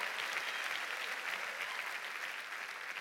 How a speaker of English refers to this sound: Put your hands together and clap and give God praise if I'm talking to you.